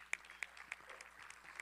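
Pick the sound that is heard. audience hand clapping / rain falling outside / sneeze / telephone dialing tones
audience hand clapping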